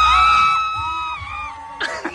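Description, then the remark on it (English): An older woman in a played video lets out a long, piercing screech that holds high and slowly drops in pitch, followed by a brief burst of muffled commotion and rustling near the end. “Did you hear the screech?”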